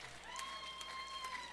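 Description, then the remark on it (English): An audience claps together for the victory in a steady wash of applause with a few sharper accented beats, while a thin sustained tone hums faintly underneath; no one speaks. “Clap for the victory.”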